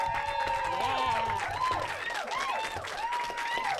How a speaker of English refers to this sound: Thank you all for being here. Can we get a round of applause, please?